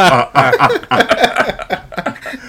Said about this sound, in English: That's why I've been coughing.